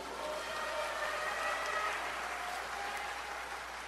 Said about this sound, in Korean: 동의하신다면 박수로 화답해 주십시오.